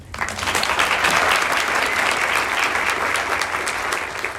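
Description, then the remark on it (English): A crowd claps for teacher candidates who will share their stories, a steady, dense wash of many hands at a loud, even level that holds for several seconds without any voices rising above it. “So thank you for the round of applause for our candidates who will be sharing their voices and stories before you all today”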